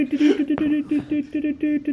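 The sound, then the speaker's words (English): A rapid string of short, steady beeping tones in an uneven on-off rhythm, a telegram being tapped out in Morse code, fairly loud with a slightly buzzy, radio-like quality. “They just sent it through in Morse code. He tapped it out.”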